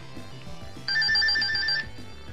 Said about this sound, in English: That's the flutter jump when you get the raccoon suit from Super Mario Brothers 3.